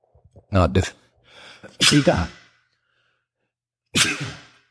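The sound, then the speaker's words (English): Three loud sneezes, each with a sharp burst after a quick inhaled breath; the first two come about a second apart, then a pause before the third. “Sorry for the sneezing. But it's an involuntary reaction.”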